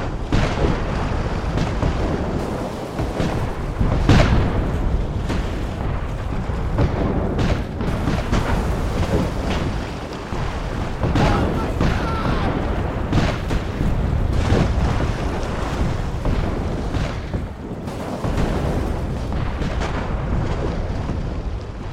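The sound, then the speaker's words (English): Relentless booming of roughly 100 Confederate guns firing, Porter's mortar ships shelling Fort Jackson and the 1st Division firing on Fort St. Philip on a dark morning; heavy overlapping blasts and bursting mortar shells roll one into another with a dense low rumble, loud and continuous with no voices. “With roughly 100 Confederate guns firing, Porter's mortar ships unleashing shells at Fort Jackson, and the 1st Division unloading on Fort St. Philip, the quiet, dark morning has become a deafening, blinding, deadly fireworks display.”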